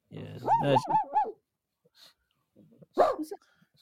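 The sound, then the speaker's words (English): A person imitates a dog barking, a quick run of four yappy, arching barks, then a pause and a single louder bark. Clear, with no other talk. “I'll bark and see if she responds.”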